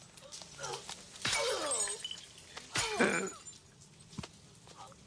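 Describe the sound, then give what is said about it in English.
A glass shower door shatters in two loud crashes, each burst followed by a spray of tinkling, falling shards, with quieter rattling debris settling afterward. “Seems a bit excessive. I would have just tapped on the glass, just been like, when you're done, mate, come out.”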